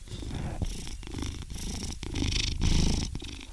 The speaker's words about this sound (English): Also, Buddy is making an appearance in today's episode. I think Buddy is our first guest. Can you hear him purring right now?